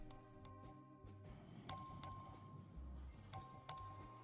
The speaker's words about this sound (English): This is the actual vote that the Republicans held to arrest the Democrats. Oh, listen to their cute little bell.